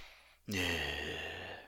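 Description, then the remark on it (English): After a brief silence, a man imitates the deep, loud breath someone takes to reset himself before speaking, a long, rough, slightly voiced inhale that lasts more than a second. “Yeah, it's always, he takes a deeper breath. Like, he goes, like that, and then he goes, and it does the thing.”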